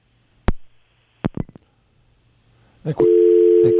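A few sharp clicks and rattles, then a steady, loud, continuous telephone dial tone hums at a low, even pitch until the end, after a dropped call. No one speaks.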